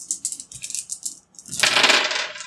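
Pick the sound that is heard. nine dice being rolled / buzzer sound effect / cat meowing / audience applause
nine dice being rolled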